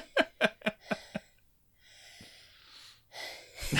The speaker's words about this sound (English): I thought you were sighing, but you were about to sneeze, and your sneeze didn't come out. Didn't happen. I've been robbed.